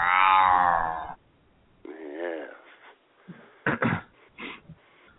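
A loud, drawn-out meow lasts about a second, followed by a shorter growling, yowling call and a few rough vocal bursts. A human voice appears to be imitating a cat.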